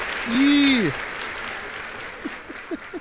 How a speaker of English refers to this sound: Yeah, keep cheering for me.